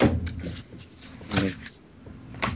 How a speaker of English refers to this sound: Whoa, something's going on in the background. Hmm? I hear doors slamming and papers shuffling.